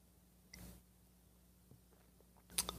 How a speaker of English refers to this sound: Fill it with your favorite beverage I like, coffee. And join me now for the unparalleled pleasure, the dopamine here of the day, the thing that makes everything better, the simultaneous sip. It happens now. Go.